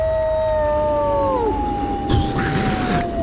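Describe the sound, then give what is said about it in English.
A long, sustained wolf howl holds a steady tone and then slowly slides lower. A brief rushing, breathy burst swells partway through while the howl continues underneath. “The skull of the wolf flings its head straight up, lets out a terrible, blood-curling howl.”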